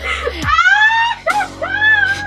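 A person screams in three loud, high-pitched bursts, each sustained with a wavering, sliding pitch, and no talking around them.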